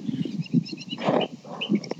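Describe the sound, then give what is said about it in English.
Birds chirping outdoors, several short high chirps scattered through the moment over a rumbling, noisy background with bursts of low sound. “Man, he had birds, dogs, wind.”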